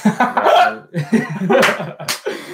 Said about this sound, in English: I got the hiccups on that one, bro. That's just funny.